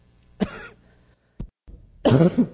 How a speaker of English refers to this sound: Sorry. I'm doing good. That's the first time I've coughed.